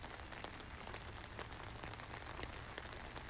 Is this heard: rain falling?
yes